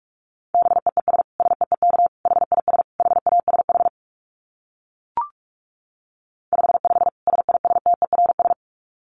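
Rapid Morse code sent at 45 words per minute in a steady mid-pitched tone: fast dits and dahs in dense bursts, a silent gap broken by one sharp click, then another quick run of keyed beeps.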